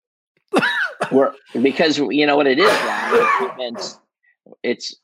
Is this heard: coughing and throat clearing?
yes